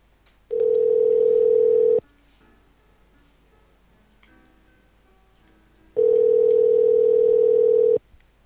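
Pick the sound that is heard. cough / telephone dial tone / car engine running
telephone dial tone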